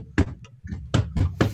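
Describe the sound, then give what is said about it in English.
Someone pounds on a heavy tower door, solidly barred from the inside, with four loud, booming thuds, one alone and then three in quicker succession, with no voices. “The doors are solidly barred from the inside. I will pound on the door.”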